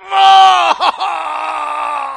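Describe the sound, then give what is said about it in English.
A single voice lets out a loud, drawn-out straining groan, wavering briefly in the middle before holding steady, imitating a grapevine straining to produce grapes. “I never once heard a branch screaming and straining to produce fruit.”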